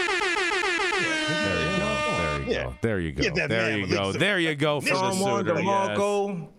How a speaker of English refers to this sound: Adam, they're asking for the air horn